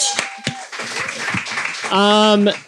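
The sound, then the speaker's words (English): An audience at the show Repeater at QED applauds for a guest, a dense wash of clapping with a few sharp claps standing out early on, and a voice rings out over the crowd near the end. “let's give a round of applause to our guest”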